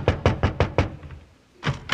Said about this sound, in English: Well, knock on the door.